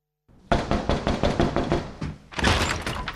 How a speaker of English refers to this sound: Let's listen to a clip from A Man Called Otto. Here is Mariana Trevino as the newly arrived Marisol knocking on Otto's door for the very first time.